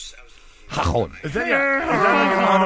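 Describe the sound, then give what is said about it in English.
A person imitates a donkey's bray with a loud, strained voice that swoops up and down in pitch, then holds a long, nasal, wavering tone until the end. “No, it's ha-hon, like a donkey sound, though.”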